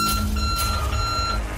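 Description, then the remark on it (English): An electronic alarm tone from the alarm function of the KGRG mobile app sounds steadily for over a second, a thin high beep held over a low rumbling background, with no one talking. “It also has an alarm function you'll probably sleep through.”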